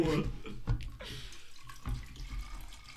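water being poured

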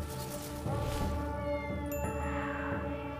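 cats meowing

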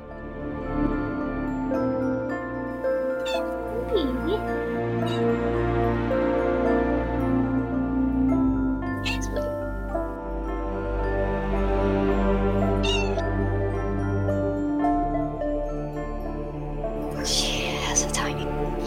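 cat purring loudly

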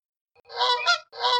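goose honking

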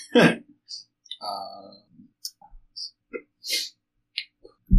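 hiccups

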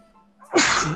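sneeze

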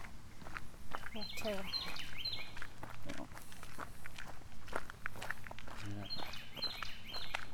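bird singing

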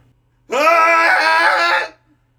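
cathartic group scream

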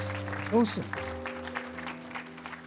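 audience applause and clapping

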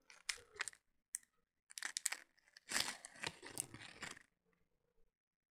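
crunching a potato chip

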